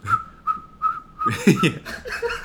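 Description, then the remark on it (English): Someone whistles four short, evenly spaced notes at nearly the same pitch, then the whistling gives way to a burst of laughter and chatter. “Yes, if you go to a club, it's whistling playing.”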